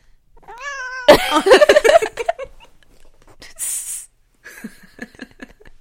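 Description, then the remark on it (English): A cat meows, opening with a clear drawn-out cry followed by a louder, raspier burst of yowling, then a brief hissy breath and a few softer, choppy vocal sounds. “Hi, Hennessy. Say something. Kitty, kitty, kitty.”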